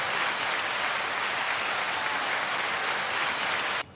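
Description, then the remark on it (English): Dense, steady applause for a speaker's words, many hands clapping at once in an even, hissing wash. It holds a constant level for nearly four seconds, then cuts off abruptly. No voices are heard. “I actually need to applaud you for what you just said.”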